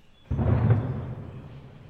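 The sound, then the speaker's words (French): A single shot of the noon cannon in Nice, France, fired every day at midday since 1861: one sudden, deep boom that breaks in abruptly and then rolls away in a long, rumbling decay. No voices. “C'était le canon de midi. À Nice, tous les jours à midi, il y a un canon qui tire, qu'il pleuve ou qu'il vente, quelle que soit la saison.”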